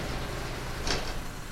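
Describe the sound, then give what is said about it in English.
A heavy environmental protection sliding door rumbles shut with a steady mechanical whoosh, then a brief sharp hiss as it seals. Moderately loud, with no voices. “Environmental protection doors now closing.”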